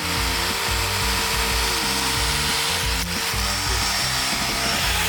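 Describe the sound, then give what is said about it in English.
An electric chainsaw runs continuously and loudly, its motor whining with a wavering pitch over a dense buzzing hiss, with no one speaking. “Is it electric? Has it got a battery pack on it?”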